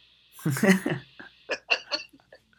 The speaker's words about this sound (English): Cough break.